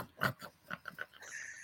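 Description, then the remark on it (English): A pug dog named Rhodey eating noisily in a dining room kitchen area, with about five irregular, snorting and smacking bursts, followed by a faint steady wheezy hiss. No one speaks. “So just to let you know, if you hear something that sounds like a pig eating.”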